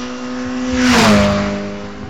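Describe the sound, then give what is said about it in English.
A Mini race car roars past, its engine note swelling to a peak and then dropping in pitch as it speeds away along the track; no one speaks. “I am enjoying hearing the cars go by. It's very good. As are... Here's a Mini.”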